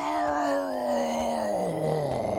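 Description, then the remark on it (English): A person vocally imitates the pained scream of orcs burned by breathed fire, taking 6 damage: one sustained, raspy, groaning wail lasting a couple of seconds, steady and loud, its pitch slowly sliding downward. “They scream out.”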